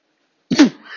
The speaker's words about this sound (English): Ooh, excuse me. I tried to fight a cough back and instead I did worse. And y'all know I'm not going to go back and edit that shit out. Sorry for your ears, especially if you were. Didn't hear that coming.